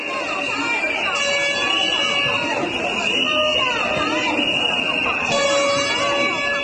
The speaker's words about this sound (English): KMT lawmakers blew whistles, held banners and sounded air horns, and as Mr. Su got going